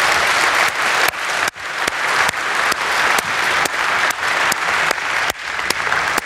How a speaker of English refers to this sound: Ladies and gentlemen, give them a hand of gratitude for that.